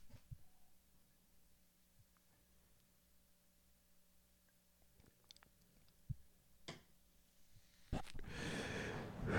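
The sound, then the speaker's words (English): Quiet mouth sounds and small clicks like sipping a drink, then a sharp inhale and a loud, breathy rush of air as a vape puff is drawn and exhaled. “We're going to take 3 seconds of silence while I take a sip and then take a puff of my vape.”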